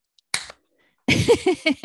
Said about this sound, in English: I added my own applause. There you go. That's good.